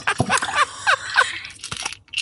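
Water splashes into a glass in an uneven, gurgling stream, with a few bright clinks and sloshing bursts over about two seconds, fairly loud and with no talking.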